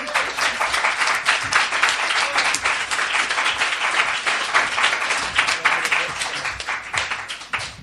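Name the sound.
audience applause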